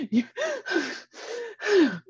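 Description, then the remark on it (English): A person imitates a runner's heavy panting, pushing out about five or six loud, rapid breaths in a row, like someone gasping for air mid-run. “And they be right on top of each other. And then breathing hard.”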